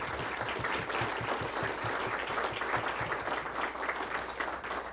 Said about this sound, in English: Great suggestions, wonderful discussion. Let's have a big round of applause for our panel.